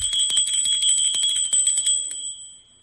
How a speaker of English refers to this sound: But I was going to say, I texted him one more time, and I gave the bell one more shot. This bell is killing me. It's so lame. This is a bell. All right, we'll try it for the last time.